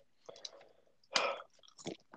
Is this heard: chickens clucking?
no